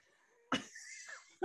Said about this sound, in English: I can't start coughing.